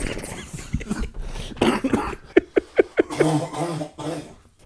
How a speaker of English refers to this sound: Oh, man. I'm going to have to edit all this coughs out.